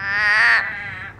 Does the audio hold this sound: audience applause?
no